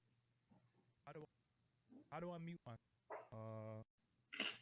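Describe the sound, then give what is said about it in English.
A faint, muffled voice of a remote caller comes through a call over a low steady hum, in short broken bursts of tonal vocal sound with gaps between them, with no words clearly audible. “Nah, we hear you a little bit. You just sound low.”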